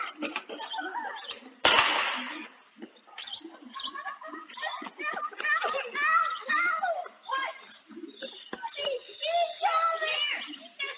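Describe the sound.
Children playing outdoors on Candlewood Lane on a Saturday afternoon, their high-pitched voices calling and chattering steadily, with birds chirping and one sharp, loud gunshot early on, fired through a house's front window.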